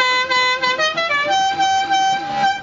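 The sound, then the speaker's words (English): A novelty car horn like the one from the Dukes of Hazzard sounds in place of a train whistle. It plays a bright, brassy melody, a run of sustained tooting notes stepping through different pitches over about two and a half seconds, loud and with no talking. “What the heck was that? Oh, you never watched the Dukes of Hazzard? That's no sound for a train whistle to make.”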